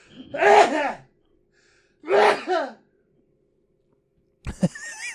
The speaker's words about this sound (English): I got a sneeze.